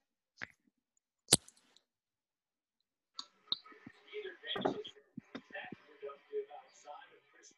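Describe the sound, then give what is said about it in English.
Someone sips water: two sharp clicks, like a bottle or lid, come first, then a few seconds of soft, wet slurping and swallowing sounds. “Did you take a sip? Of my water, yes.”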